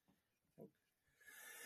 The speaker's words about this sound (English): That's the first time I've sneezed thus far.